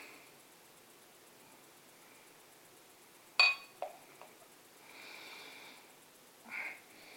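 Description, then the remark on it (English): A sharp glass clink and a couple of small taps, followed by a soft, fizzy rush of beer from a yellow-topped bottle pouring into a glass for about a second, then a brief hiss. Quiet, no talking. “Just decant this into the glass. Oh, you can hear that.”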